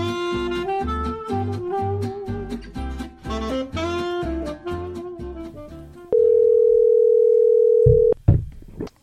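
A bouncy musical jingle plays for several seconds, then gives way to a single loud, steady telephone ring tone lasting about two seconds before it cuts off. No one speaks.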